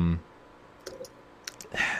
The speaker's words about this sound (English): I hear someone typing pretty loudly.